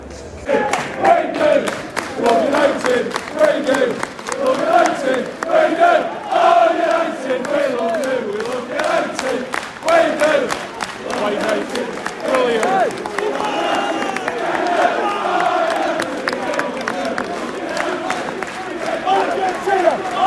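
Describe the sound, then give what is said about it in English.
A large Leeds United football crowd at a match shouts and chants continuously, a dense mass of voices rising and falling, with sharp claps and bursts of yelling scattered throughout. “They're loud at times, quiet at others, and are just sort of shouting nonsensical rubbish at us.”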